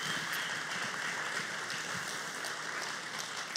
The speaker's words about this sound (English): In fact, can we just pause for a moment and can we just give a round of applause just thanking all those who serve and set up every single week.